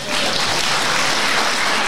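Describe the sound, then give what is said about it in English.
A crowd claps steadily at an evening event, for representatives of St Mungo's charity: a dense wash of many hands applauding at a constant loudness throughout the short burst, with no voices over it. “Give them a little clap, maybe.”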